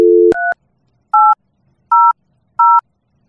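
A telephone number being dialed: a short dial tone cuts off into four crisp touch-tone keypad beeps, evenly spaced with quiet gaps between them. No one speaks.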